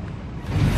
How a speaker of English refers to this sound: And Erica, the dangerous waves, in fact, I can hear some behind me, have prompted authorities here in Manhattan Beach to close the pier that you can see.